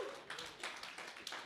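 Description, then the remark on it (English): A crowd claps their hands in praise to the Lord, a dense, fairly quiet patter with a loose rhythmic pulse swelling roughly three times a second, with no talking. “Can you give the Lord a hand clap of praise for that?”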